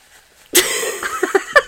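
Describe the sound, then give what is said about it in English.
A loud nose blow: one long, noisy honking burst followed by several short, sharp snorts as the person finishes clearing their nose. No one speaks. “I'm blowing my nose.”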